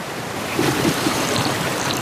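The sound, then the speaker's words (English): A steady, rushing splash of water pouring out of a rock wall into a pool, continuous, with no voices and no breaks for the whole stretch. “Water just pouring out of that rock wall into a pool.”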